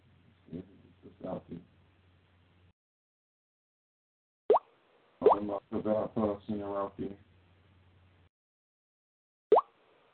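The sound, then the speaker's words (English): A tablet's water-drop notification plays twice, each a short, bright, bubbly plip with a quick upward pitch slide, separated by several seconds of people talking. “So with that water dropper, keep hearing it. That's somebody's phone, that tablet or some shit.”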